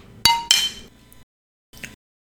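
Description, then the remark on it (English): Two bright glass clinks in quick succession as people toast with a 5.1% alcohol-by-volume drink, each ringing briefly before fading, followed by a faint softer tap a moment later. “Oh, nice. Cheers.”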